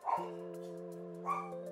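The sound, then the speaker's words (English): A dog barks, two sharp yelps about a second apart over a steady, drawn-out whining tone, with no one talking. “Let me bring that dog back in. Another thing to edit out.”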